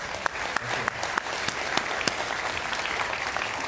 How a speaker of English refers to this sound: Can everybody give a big applause